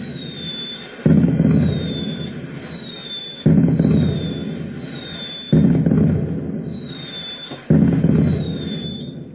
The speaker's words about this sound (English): Everywhere is fireworks. All I see are fireworks.